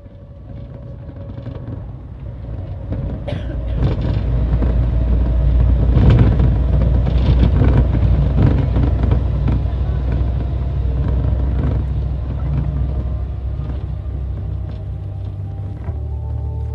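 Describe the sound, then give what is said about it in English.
A Mercedes-Benz double-decker bus's engine rumbles steadily while driving on a long-distance ride to Buenos Aires, Argentina, a deep continuous drone that swells slightly and then holds, with faint clatter and shifting noise layered over it. “Buses in Argentina are grand Mercedes-Benz built double-deckers that crisscross the country at all hours, day and night.”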